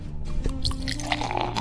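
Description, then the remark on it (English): Pipeworks Brewing beer from Chicago, Illinois is poured into a glass, a steady gurgling stream with fizzy, bubbly splashes as the glass fills, lasting under two seconds with no talking. “Well, you poured it quietly in the foreground, too.”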